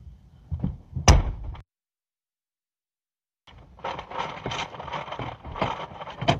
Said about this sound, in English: Can you open up the door? Get me out! I can't leave! It's not opening